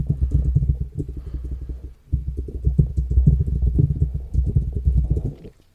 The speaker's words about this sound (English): Sorry if you can hear the keyboard.